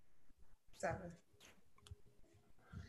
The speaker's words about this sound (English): I'm sorry, I'm just typing as you talk.